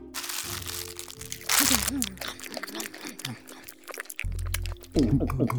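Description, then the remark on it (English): Loud crunching and chewing of fizz bars, a rapid jumble of crackly bites over several seconds, with voiced humming and mumbling sounds mixed in. “Well, darn, we ate all the fizz bars. But they sure were good.”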